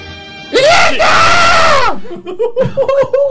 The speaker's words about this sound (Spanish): Lo dejó claro, el grito, sí. Yo creo que se escuchó bien, perfecto. De sí, punta a punta.